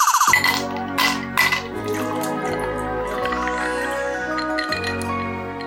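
Glasses clink together a couple of times near the start in a toast to a long-running presenter best known for Just a Minute, bright tones ringing on over a soft liquid trickle with no talking.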